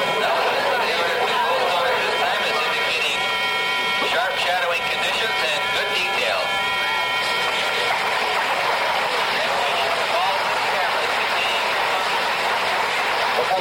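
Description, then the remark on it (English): A constant hum from the Ranger 8 spacecraft's telemetry signal, coming back to Earth in its final minute before impact on the moon in the Sea of Tranquility after a 65-hour, 248,000-mile journey. Several steady layered tones drone on without a break at an even, fairly loud level. “When that constant hum dies out, you will know that Ranger has actually impacted on the moon.”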